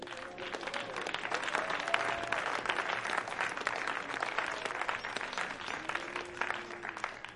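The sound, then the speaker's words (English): An audience claps their hands in a dense, sustained burst of applause lasting several seconds, with faint voices murmuring underneath. “Go ahead, clap your hands.”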